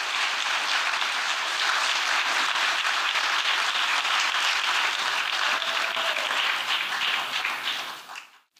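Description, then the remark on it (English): Sustained applause from a sizable audience after a told story, a dense wash of many hands clapping at steady volume for several seconds before quickly fading out at the end. “Let's give Mary a big round of applause.”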